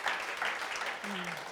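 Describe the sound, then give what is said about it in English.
An audience applauds steadily, a dense wash of many hands clapping at an even level throughout, with a faint voice briefly audible beneath the clapping toward the end. “And you're going to have to clap again”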